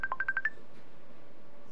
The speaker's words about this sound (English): So that's What's able to ring? Oh, that's my laptop.